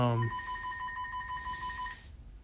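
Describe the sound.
A telephone rings with a steady electronic trilling tone that pulses rapidly for about two seconds, clear, after a brief low voice sound at the start.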